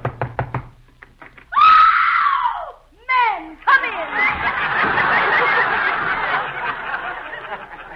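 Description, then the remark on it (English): A quick run of four or five sharp knocks on the door of Tessie Tinfoil's house, followed by loud, high-pitched excited voices shrieking and laughing over one another. “Go ahead and knock.”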